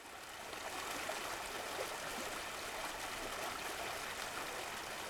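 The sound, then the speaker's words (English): Steady flowing stream water of the River Tyburn, which runs beneath Oxford Street, a continuous rushing babble that stays even throughout, with no voices or other sounds. “The road harbours many secrets, but one of our favourites is the forgotten river that runs beneath it.”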